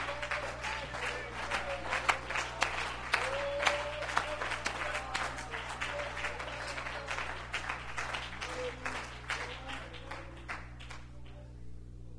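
A crowd applauds with dense, sustained hand clapping in praise of Jesus one morning, holding steady for most of the stretch, with scattered voices and a low steady hum underneath, then thins out toward the end.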